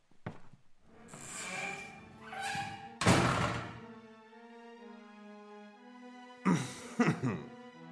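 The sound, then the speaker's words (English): A door swings shut with a solid, resonant thud, followed a few seconds later by a couple of heavier thumps, all set against a sustained, humming musical tone. “Please, close the door behind you and allow me a few moments with my beloved wife.”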